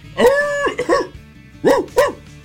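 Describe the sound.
A person's voice imitates a dog barking, giving four short, loud, harmonic barks in two pairs with a brief pause between them, with no other talking.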